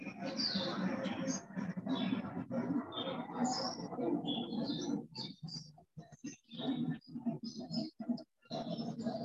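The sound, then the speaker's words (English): Birds chirp and sing outdoors in quick, repeated high phrases, fairly clear against a steady low rumble of background noise, with brief quieter gaps between bursts. “It had been on the bird sounds, and now it's on the airplane.”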